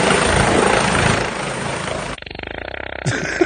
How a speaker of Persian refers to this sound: صدای هلیکوپتر و گوز رو با هم دیگه، این کونیه که صدای هلیکوپتر داره در میاره